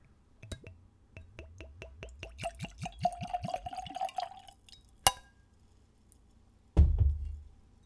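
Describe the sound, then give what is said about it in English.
Liqueur glugs from a screw-cap bottle into a tulip-shaped nosing glass, poured neat at room temperature, in quickening pulses that rise in pitch as the glass fills, followed by a sharp clink and a dull thud. No one speaks. “And let's give it a pour.”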